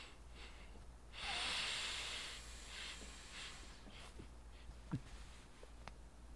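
Slow, deep breathing as a breathing exercise: one long, loud rushing breath, then several softer breaths at a steady pace, with no talking.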